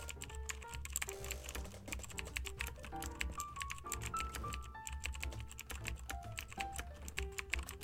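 Rapid, continuous typing on a computer keyboard while setting up a Twitter page, with crisp key clicks in an uneven stream throughout, set over a soft background of sustained melodic tones.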